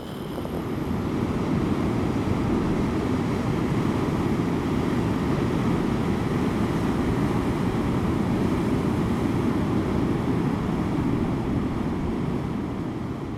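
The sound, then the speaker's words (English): A steady, loud wall of roaring surf at the seaside, broad and continuous like big ocean waves breaking, with no distinct individual crashes standing out and no voices. “When I think of the seaside, first there is the sea, and the big, all-encompassing waves.”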